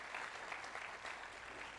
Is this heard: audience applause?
yes